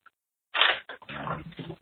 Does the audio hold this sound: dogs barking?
yes